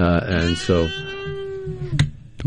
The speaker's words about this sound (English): Oh, that was me. I thought we had a cat in there somewhere. my microphone was squeaking as I was turning it a little bit.